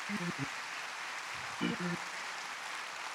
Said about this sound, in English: Come on, you can clap a little bit better than that.